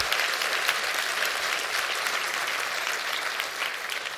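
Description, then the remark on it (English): An audience claps their hands steadily for about four seconds, a dense, even wash of applause with no voices standing out. “Would you clap your hands and receive that today?”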